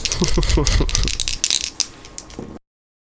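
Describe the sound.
Dice rolled for an attempt to influence someone rattle and clatter across a surface in a quick burst of sharp clicks, settling after a couple of seconds on a total of 7, with a faint voice murmuring underneath at the start.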